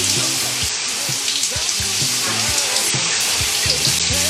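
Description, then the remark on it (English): Shower water runs in a steady hiss of spray that never lets up, with a faint low murmur underneath and no voices. “No, I can't take your dress down now. I'm in the shower.”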